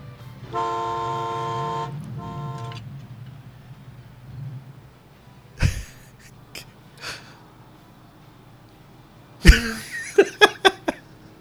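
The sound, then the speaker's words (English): In a scene from the film Urban Cowboy, a vehicle pulled up at a red light idles with a low engine rumble, gives a short horn toot, then sharp bursts and a quick flurry of revving sounds suggest it speeding away; no one speaks. “He pulls up at a red light.”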